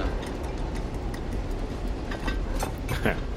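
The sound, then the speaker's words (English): A subway train rumbles past in a steady, heavy low roar that fills the whole stretch, with faint metallic clicks and ticks from the wheels and rails scattered on top. “This is great. subway. It'll go away in a minute.”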